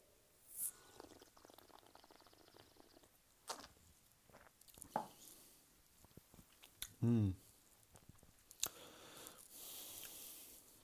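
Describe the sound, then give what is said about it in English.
A quiet sip of rum, a soft slurp followed by a brief wet swallow, with small mouth sounds, faint clicks and breaths around it. “Now let's sip.”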